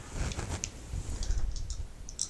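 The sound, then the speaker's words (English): A quick clatter of small hard objects, two dice rolled to move the Mystic Elevator card in a game, tumbling and clicking across a surface in a brief burst of light taps, with no talking. “Okay, so I have to roll 2 dice.”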